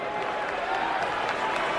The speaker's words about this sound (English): See, they cheered the hockey players. They go right back to booing unelected official Governor Kathy Hochul. There's the boos. Here come the boos.